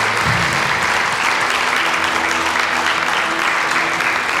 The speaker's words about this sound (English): Can we give the Lord a clap offering for those who have their hands lifted this morning?